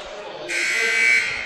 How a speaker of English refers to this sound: And there is a whistle.